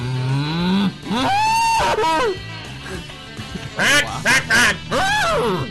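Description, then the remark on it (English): Someone vocally imitates cow moos: a string of drawn-out, wavering lowing calls, loud, with a few breathy, honking bursts toward the end. “Here we go with the cow sounds.”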